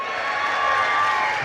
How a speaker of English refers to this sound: That wasn't very spontaneous. Sorry, you missed your opportunity. It was the first time. I'll tell them that 10 people clapped for him.